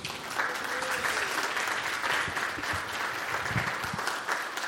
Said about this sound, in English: But one last round of applause, please.